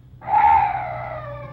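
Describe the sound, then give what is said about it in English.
A single eerie call of a night bird in the dark: one drawn-out, shrill cry at a steady mid-high pitch that starts abruptly, then slowly fades over a low background rumble, with no voices. “Oh, what's that? Oh, some night bird.”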